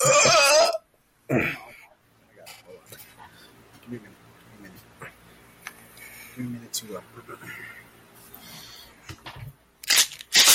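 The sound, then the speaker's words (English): A voice imitates a loud, drawn-out burp of a man in a movie theater, followed by a shorter burst, then quieter murmuring and shuffling before another loud vocal blast at the end. “No, the worst is when you hear burp in the movie theater.”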